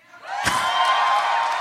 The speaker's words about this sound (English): Okay, now cheer if you think I will enjoy it.